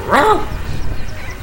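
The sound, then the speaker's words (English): A dog with no collar or license tag gives one short, sharp bark with a bright, slightly rising tone, followed by a second and a half of low background rumble and no further barking. “Say, he hasn't got a collar, Harry. Or a license tag. I'll bet you somebody's missing him. A good-looking animal.”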